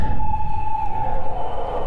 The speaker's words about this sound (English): let me let this siren go by.